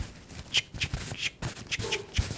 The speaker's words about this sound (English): Okay, let's just go ahead and get our scissors going.